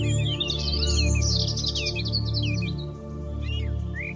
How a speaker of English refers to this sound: Find yourself now walking on a path that is leading through a beautiful ancient forest, where the birds are singing their welcoming song, reminding you of the sacredness of life.